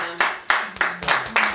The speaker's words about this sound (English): You guys want to clap? You're going to really clap.